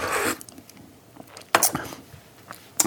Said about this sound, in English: Let me just have a sip of tea.